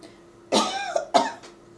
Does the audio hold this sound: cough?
yes